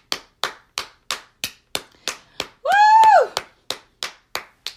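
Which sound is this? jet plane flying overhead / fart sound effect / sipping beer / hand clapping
hand clapping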